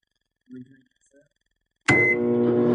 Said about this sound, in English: Yeah. That's 100% right. Yeah, because I heard it. Oh, okay. It was a microwave sound.